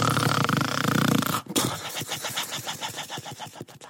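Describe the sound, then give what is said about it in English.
A voice imitates a wolf's snore: a long, raspy rumbling breath followed by a rapid, rattling series of snorting pulses, loud and alone with no talking. “And little daughter, she didn't stop singing until she heard a wolfy snore.”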